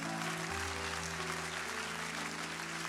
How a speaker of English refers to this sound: Come on, keep on clapping. Just keep on clapping like God's able.